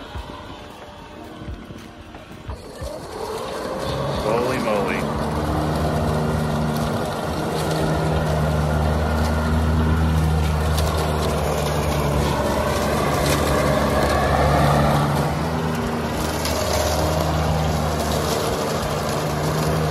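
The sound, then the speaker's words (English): After a couple of quiet seconds, the motor of a vehicle converted from a mower kicks in and drives steadily. An old hydraulic mower transmission runs its wheels and brakes. It makes a loud, continuous whirring drone with a low hum that holds to the end. “I'm using an old hydraulic transmission and mower to run the wheels as well as the brakes.”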